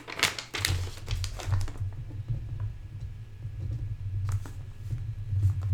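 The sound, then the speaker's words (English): Rustling and tapping of paper being handled to write down WWE match predictions, with a cluster of sharp crinkles and taps at the start, then quieter scratchy sounds over a steady low hum. “Let me get a good thing about this paper right here so we can write these down.”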